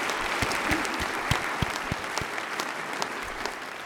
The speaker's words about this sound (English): So would you give everybody a round of applause for their great efforts?